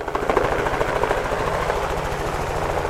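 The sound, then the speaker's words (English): A helicopter thuds steadily overhead above snowy open hills in the Grosvenor Wilderness, Teton County, Wyoming, as researchers capture bighorn sheep; its rapid rotor chop pulses loud and continuous with a low engine drone beneath, no voices present. “A helicopter flies above the snowy open hills in the Grosvenor Wilderness in Teton County.”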